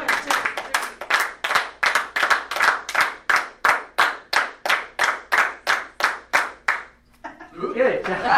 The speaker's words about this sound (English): Clap 19 times.